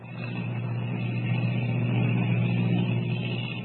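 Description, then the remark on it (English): A steady airplane engine drones on in flight as a large plane flies toward a boat waiting 10 miles off the coast, a deep, even hum with layered low tones that holds constant throughout, with no voices over it. “As the giant ship hurtles through the sky, Kent wonders what will be waiting for them.”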